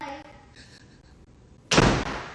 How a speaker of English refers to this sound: You don't have to close the door so heavy, okay?